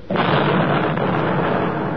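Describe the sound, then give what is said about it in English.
A V-1 flying bomb, its engine having stopped, drops on the next block in London in 1944 and explodes with a sudden loud blast, then a heavy, roaring rumble that holds steady for the rest of the moment. There are no voices. “Look out, here comes another V-1. Yeah, the engine stopped.”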